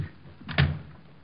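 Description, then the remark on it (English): A door swings shut with a short latch rattle and a dull thud, one quick closing with no voices. “Well, use all you like, but I think you better go back and close the door.”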